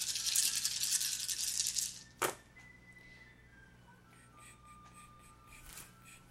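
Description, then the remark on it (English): Dice rattle loudly and continuously for about two seconds, ending in a sharp clack, followed by quiet with faint tones and soft shuffling. “Okay, so you can get some extra dice there.”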